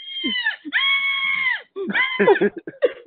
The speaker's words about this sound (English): Oh, you hear muffled scream.